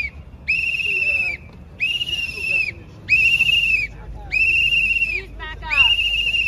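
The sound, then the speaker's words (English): A man blows a shrill whistle into people's ears five times in a steady rhythm, each piercing blow lasting under a second, loud over a low murmur of crowd noise. “You blowing a whistle in people's ears, damaging their hearing.”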